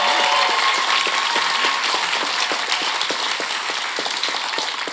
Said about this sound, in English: Yes, it is quiz time, and we've got some fabulous contestants on stage tonight. Would you please stand up and round of applause for our contestants?